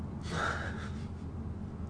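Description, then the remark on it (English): A single drawn-out human yawn, a breathy intake rising into a brief voiced whine before trailing off into quiet background hum. “That's it. I'm yawning.”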